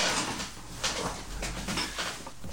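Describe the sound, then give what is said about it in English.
A chair creaks and groans several times in quick, irregular bursts as someone shifts their weight, with a soft room hiss between the creaks. “Your chair is distracting me.”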